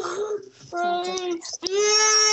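An upset baby cries in loud, high-pitched wails, three drawn-out bursts separated by brief catches of breath, with no other voices.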